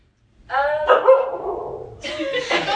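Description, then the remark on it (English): A dog barks, a drawn-out bark that trails into a whine, then two quicker sharp barks follow near the end. “You don't have to bark.”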